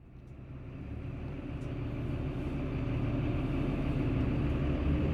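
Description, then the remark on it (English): A steady, droning engine rumble fills the inside of a moving bus on a ride to work, low and constant with a faint swell as it goes on. No one speaks. “I was riding the bus to work, and I was sitting next to her.”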